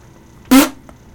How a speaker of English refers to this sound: That was …'s mouth, everybody. It could be a laugh fart.